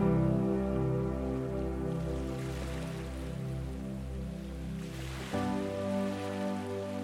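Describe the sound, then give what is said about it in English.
Ocean waves breaking on the shore of a beach in a soft, continuous wash, blended with a sustained, warm musical drone; no voices, a steady, calm soundscape. “And every time you hear the waves breaking on the shore, you are becoming more and more relaxed each and every time.”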